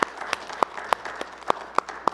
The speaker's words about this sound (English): Come on and give him one more hand clap if you wouldn't mind.